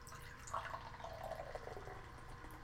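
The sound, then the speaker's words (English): Beer, a cloudy summer pale ale brewed with orange peels and Nugget hops, is poured as a small tasting pour into a glass for a couple of seconds. It makes a soft continuous splash whose pitch rises slightly as the glass fills. Fairly quiet, with no talking. “I'm going to pour you a little taste.”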